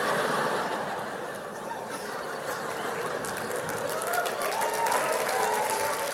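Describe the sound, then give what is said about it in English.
A crowd claps steadily throughout, a dense wash of many hands with scattered laughter and chuckles mixed in, sustained for the whole stretch. “Don't clap, you ate the lolly.”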